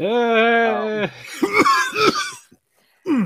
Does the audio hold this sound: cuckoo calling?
no